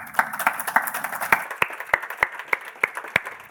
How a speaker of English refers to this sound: And another massive round of applause for our four panellists this evening. Thank you so much.